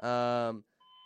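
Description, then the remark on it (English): A warning test alert during a live show: a loud, buzzy electronic alert tone rich in harmonics sounds for about half a second, then after a brief gap a steadier, thinner two-pitch warning beep holds. “Apologize for those beeps again.”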